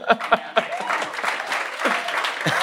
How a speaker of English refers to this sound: They deserve the applause.